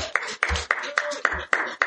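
Steady, rhythmic clapping, about three or four claps per second, close and fairly loud, with no voices over it for the couple of seconds it lasts.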